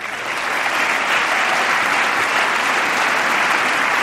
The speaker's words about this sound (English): Come on, Boner, stand up and clap because they want to do it together. Boner, come on, stand up.